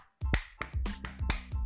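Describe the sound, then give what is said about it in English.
A group claps in a quick, uneven rhythm, the 'Don't give up clap', about half a dozen sharp, bright claps over less than two seconds, with a low hum sustained underneath. “Don't give up claps and the highest clap, okay?”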